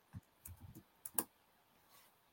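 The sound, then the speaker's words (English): A handful of soft, irregular keyboard clicks, quiet, clustered in a short burst with small pauses between keystrokes and no one talking, as someone types a private message on a computer keyboard. “I was just typing a private message,”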